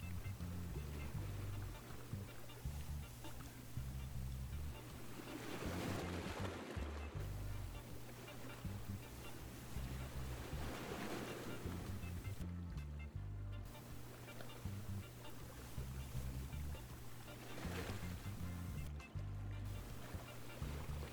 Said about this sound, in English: And soon, you drift off to sleep with the sound of the waves.